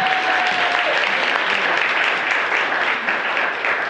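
Steady, dense applause from a crowd at a live talk event on relationships, welcoming a guest, fills the whole stretch: a loud wash of many hands clapping at once with no pauses, sustained throughout.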